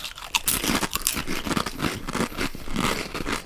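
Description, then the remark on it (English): Loud crunching of sea salt potato chips being chewed, a dense run of crisp, crackly bites and munches continuing steadily with no talking. “That's really crunchy.”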